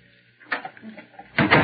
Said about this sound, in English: Will you open the door